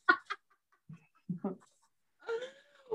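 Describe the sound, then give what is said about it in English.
A person mimics bird calls: two sharp squawks, a few low clucking grunts, then a longer warbling, rooster-like cry that bends downward before trailing off. “Hey, if anybody needs a stunt double bird fucking flyer, I'm here.”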